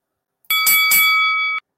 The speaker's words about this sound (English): We do have a bell, but we didn't hear a fight this week.